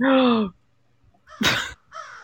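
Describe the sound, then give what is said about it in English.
A crow caws three times in quick succession, harsh and loud, with short pauses between the calls; the middle caw is the raspiest. It is played as a 'Comedy Crow' sound effect after a joke. “Thank you, Comedy Crow.”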